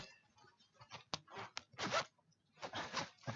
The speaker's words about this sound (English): before we can start, we got to take off our pants. We got to take our pants off. All right. Get that zip in